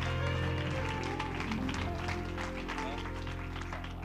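An audience claps their hands in a dense, steady wash of applause lasting about four seconds, with sustained low musical tones humming underneath and a few voices mixed in.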